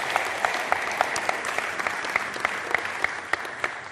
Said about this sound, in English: They're all clapping you.